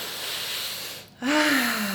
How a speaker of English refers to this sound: So the deep breathing.